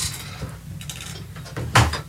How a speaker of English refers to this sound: Let me close this door.